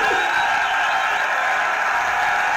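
A large crowd cheers and chants for Tiger in a steady, loud wash of cheering that fills the whole moment without letting up.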